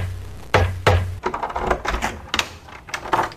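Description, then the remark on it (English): Two sharp, loud knocks on a door ring out, followed by a quicker flurry of lighter raps and thuds. No one speaks. “Just then, a knock at the door is heard.”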